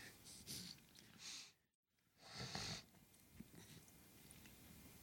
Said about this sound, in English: Let me finish chewing this real quick. That was a bad time to put fucking jerky in my mouth.